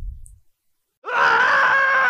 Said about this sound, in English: You scream.